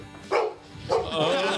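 A dog lets out two sharp barks in quick succession, followed by a drawn-out, high-pitched whining yelp.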